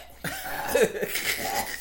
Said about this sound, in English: It's not static you're hearing. Fucking … burping.